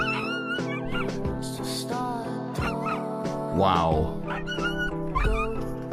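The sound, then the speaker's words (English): An abandoned dog whimpers and lets out short, high yips, with one rising whine midway, all mixed under background music and a person speaking briefly. “But this dog doesn't even want to be touched when they found this dog abandoned 2 years ago.”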